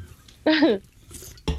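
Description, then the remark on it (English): Glasses clink together in a toast, a bright clatter followed by a second quick clink a moment later, with no talking over it. “Stepdads and ferrets. Cheers to them.”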